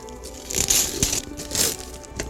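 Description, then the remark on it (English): Christmas gift wrapping paper tears and crinkles in several bright, papery bursts of rustling and ripping, loudest at the start and middle, with brief pauses between. No voices. “Hey, it's the same shape and the same wrapping paper.”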